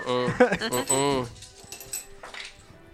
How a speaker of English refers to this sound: There's a tray of dice. I mean, you could have just rolled one twice. I mean, we're going to need them back.